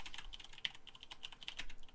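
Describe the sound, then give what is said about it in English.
Rapid, uneven clicking of keys on a computer keyboard, steady typing bursts with no voices present. “Wrong keyboard.”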